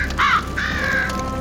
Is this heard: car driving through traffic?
no